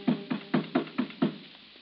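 Six quick, evenly spaced knocks on a door, each a dull, solid thud with a short ring-off, close by and fairly loud, then quiet. No one speaks.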